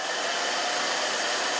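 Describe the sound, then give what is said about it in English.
A steady, loud airy whoosh of a RevAir hair dryer runs continuously, with a breathy suction-like roar and no voices. “To me, that sounds like it's sucking in. I think that's the Rev Air.”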